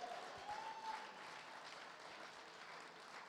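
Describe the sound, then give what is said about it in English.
A crowd claps steadily and densely for a few seconds, with a brief rising cheer or whoop early on, the applause holding an even, sustained level throughout. “If you feel like that is for you, you need to clap, you need to scream, you need to receive it.”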